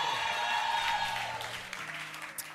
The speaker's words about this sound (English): Clap your hands for him. Keep clapping your hands.